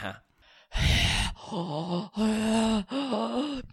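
A loud, breathy gasp, then a series of drawn-out voiced groans and moaning exhales, each a second or so long, with no words spoken.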